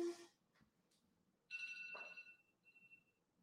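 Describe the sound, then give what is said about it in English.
A phone alarm rings with a bright, steady electronic tone, sounding in two bursts—one longer stretch, then a shorter return—fairly loud over a quiet background, with no talking. “Sorry, I couldn't let my alarm run the rest of the episode.”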